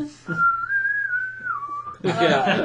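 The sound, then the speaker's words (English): A person whistles one long, clear, sustained note that holds steady and then drops slightly in pitch near the end, followed by a burst of loud, noisy voices; a scene near the end of the Marvel film Black Widow in which her sister whistles. “There was, like, the one clip at the end where, like, her sister whistles, and you're like, is she gonna whistle back?”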